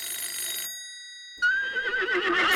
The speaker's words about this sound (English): please, can you answer that phone? I'm having my big emotional moment.